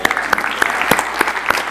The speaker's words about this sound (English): He wants to give men favor. Should have clapped right there.